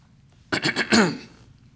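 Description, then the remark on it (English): A man clears his throat once, fairly loud, a short rough rasp of a few gravelly pulses that fades out in about a second, with quiet sound before and after. “he didn't clear his throat.”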